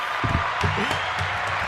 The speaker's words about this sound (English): We'll give you a crowd clap.